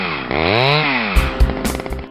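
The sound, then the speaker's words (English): A chainsaw engine revs up to a high whine and drops back, then sputters in rough, choppy bursts; loud, with no one speaking. “Up next, chainsaw safety.”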